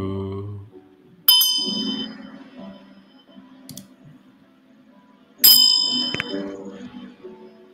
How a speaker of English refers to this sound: Let me end it with some bell action.